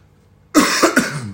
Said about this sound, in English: Oh, they can hear me cough.